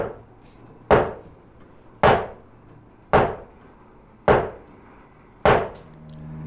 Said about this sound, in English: I really liked the sequence where he starts knocking on the table.